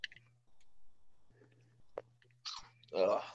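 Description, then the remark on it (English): Wet smacking and crunching of someone on a Zoom call chewing with an open mouth, in short irregular bursts over a low steady hum. “Okay, whoever's chewing, can you, like, chew with your mouth closed, please?”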